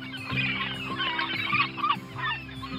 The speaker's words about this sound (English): Maybe seagulls, if you live close to the water.